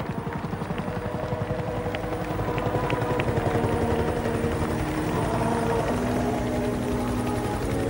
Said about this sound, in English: See helicopters coming down, and they landed just right beside the house.